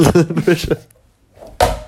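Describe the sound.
A sticky soft plastic ball hits the ceiling and sticks there with one dull, fairly loud thump, following a short stretch of voices talking and a brief quiet pause.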